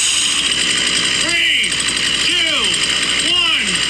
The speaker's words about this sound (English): There he goes, turning on the, firing up the chainsaw. Oh my gosh.